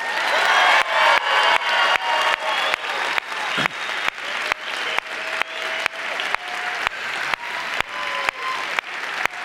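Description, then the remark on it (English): An audience breaks into loud, sustained applause to celebrate moms, a dense wash of many hands clapping steadily for several seconds, with a few faint whoops rising from the crowd. “And I want you to give applause today commensurate to that, all right?”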